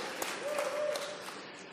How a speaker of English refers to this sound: I am now just a few breaths away from 60 years old. And we're going to applaud that, I guess.